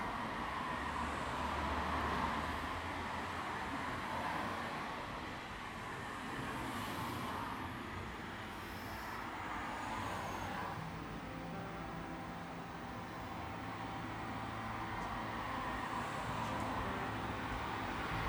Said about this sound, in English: I walk outside and all I can hear is the wind and the hum of distant cars, and I feel peaceful.